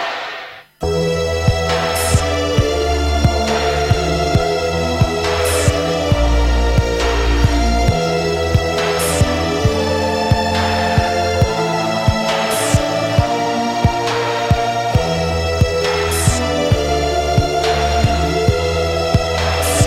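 An electronic synth-pop track plays loudly and steadily, with sustained synth chords over a deep pulsing bass and crisp percussion hits marking a regular beat, with no vocals.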